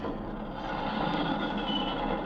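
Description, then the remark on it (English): A train engine being stopped on an inspector's order: a loud, steady rumble with broad hissing noise that holds at an even level throughout, with no voices. “Stop the engine at once”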